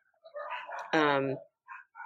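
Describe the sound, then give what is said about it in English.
Dogs bark: a couple of shorter barks, then one loud, drawn-out bark, followed by two quick, softer yaps after a brief pause. “They're barking and going nuts, so I'm gonna miss.”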